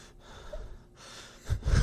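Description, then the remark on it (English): A person loudly imitates heavy, huffing breaths, as loud as an ox, a few airy gasps that swell into harsher, louder exhales near the end, with no talking. “And breathe as loud as an oxen.”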